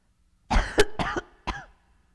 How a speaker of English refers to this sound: I'm coughing because I'm talking. This is going to not be great.